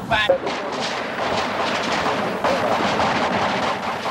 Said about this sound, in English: The massive gunfire exploded a half a block away from that house.